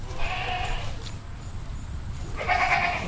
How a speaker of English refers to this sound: A stately llama stands guard atop a hill. He's protecting an unusual herd of goats and sheep from lurking coyotes. Among them are hairless-faced Gulf Coast sheep, Hog Island sheep with curled horns, and Tennessee fainting goats